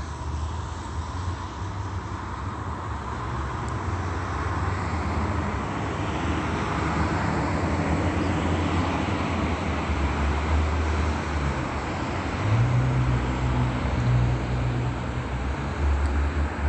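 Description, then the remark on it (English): A Union Pacific train rumbles past, a steady, loud, unbroken roar with a deep droning engine hum underneath that swells slightly near the end. No voices. “That's Union Pacific. The sound of the train.”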